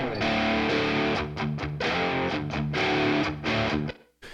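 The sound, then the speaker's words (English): Electric guitars, hard panned left and right and played through a different amplifier with less distortion, play a rhythmic riff of chugging chords with a lighter, cleaner crunch, loud and up front with no voices, ending in a brief pause. “So a lot less distortion compared to the previous one.”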